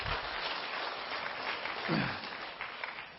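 An audience gives the Lord a clap offering in a steady, dense wash of clapping that holds at an even level for about three seconds, with a brief low vocal sound rising out of it midway.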